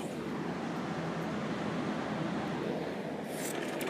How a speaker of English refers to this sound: Listen to the waves of the ocean.